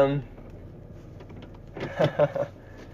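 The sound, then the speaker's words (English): Steady low engine rumble and road hum fill the inside of a moving car heading back from Logan, with a brief voice at the start and a few short bursts of talk near the end. “I am in the car, and I am heading, back from Logan, so that's fun.”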